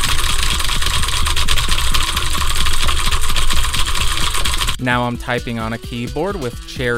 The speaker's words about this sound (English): Now I'm typing on a keyboard with Cherry MX Blues.